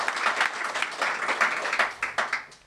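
A crowd applauds steadily, many hands clapping together in a dense, fairly loud burst that continues throughout with no talking over it.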